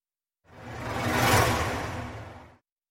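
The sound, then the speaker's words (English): A gentle patter of rain, a soft steady hiss that swells in and fades away over about two seconds, with no voices. “There's something else instead. The gentle, inviting patter of rain.”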